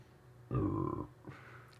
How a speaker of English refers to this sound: I am burping a lot.